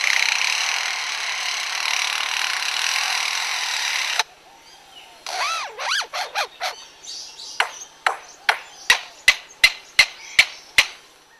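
A lyrebird mimics chainsaws at work: a loud, steady buzzing engine drone, then wavering revving sweeps, followed by a fast run of sharp, evenly spaced cracking clicks mimicking trees cracking and falling, clear with no talking.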